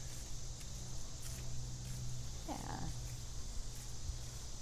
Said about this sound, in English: I hear the annual cicadas going off a little bit.